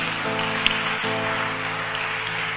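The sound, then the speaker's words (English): An audience at a church service on Mother's Day claps in steady, dense applause that fills the whole moment, with sustained keyboard-like tones humming underneath and no one speaking. “Clap for them.”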